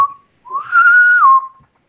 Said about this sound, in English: whistle of the intercom. Engineering to Miral and Chang. Please report to transporter room 1 as soon as your lunch break is over.